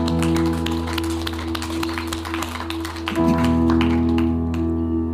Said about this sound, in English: Can we just end by just a praise clap to Jesus? Thank you, Lord.